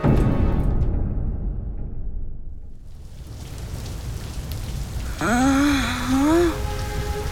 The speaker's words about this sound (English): Rain was pouring from the sky. The raging fire met with the heavy rain and began to die out.